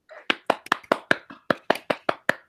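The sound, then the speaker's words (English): A quick run of about a dozen sharp hand claps at a steady pace, with one brief pause partway through. The claps are crisp and fairly loud, with no voices. “Clap.”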